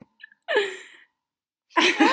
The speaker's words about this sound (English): Sorry there for the sniffing. We were just getting some essential oils in our life. Getting some mantra peppermint into our life.